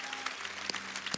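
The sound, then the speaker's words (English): A crowd claps steadily for Pastor Joby in a dense, continuous patter of many hands, with a few sharper individual claps standing out, lasting just over a second at moderate loudness. “How about giving a big round of applause for Pastor Joby?”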